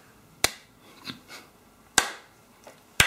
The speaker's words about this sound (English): Can you actually clap?